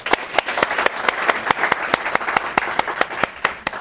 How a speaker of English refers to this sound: So since I'm in this little moment, just shout out to Torah Anytime. Can we just clap our hands for Torah Anytime, please?